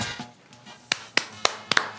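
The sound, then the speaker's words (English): A handful of sharp hand claps, about five, spaced at a fairly steady beat with the last two coming in quick succession, over a faint low hum. “We're not going to clap anymore.”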